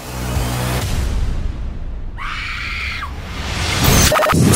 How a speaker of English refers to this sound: Go ahead, scream. That's all we need.